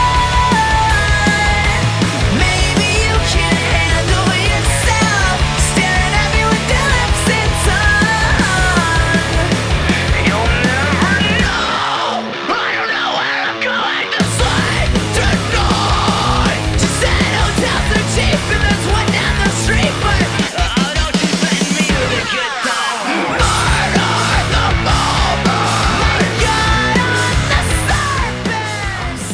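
Loud, dense screamo rock with driving guitar riffs and pounding drums, a brief breakdown near the middle before the full band crashes back in. Harsh vocals are buried in the mix.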